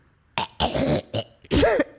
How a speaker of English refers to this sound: You want to tell them the thing that you do right before we record every time? I clear my throat.